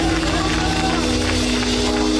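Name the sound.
audience clapping hands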